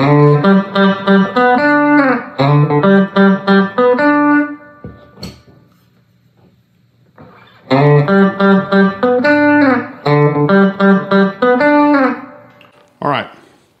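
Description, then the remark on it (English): An electric guitar plays a quick melodic line of bright, ringing notes, stops for a few seconds of near silence, then plays the line again, ending with a short click, comparing the sound with the guitar's bridge cover on and off. “So here I'm just gonna play a line and take it off and go back and forth.”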